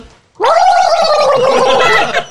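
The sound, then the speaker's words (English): A person imitates gurgling water with their voice: a loud, high-pitched, bubbling warble that starts abruptly and holds steady for about two seconds before cutting off. No one speaks over it. “You just hear gurgling in the water.”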